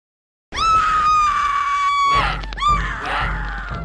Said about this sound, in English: Scream all you want, my soon-to-be shishka babe.